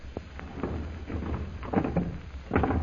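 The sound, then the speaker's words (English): A heavy door is pulled shut, with a series of wooden clunks and scrapes over about three seconds and a final solid thud near the end. “We'd better close this door again, Kolo.”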